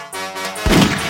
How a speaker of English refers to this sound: I love the gunshot.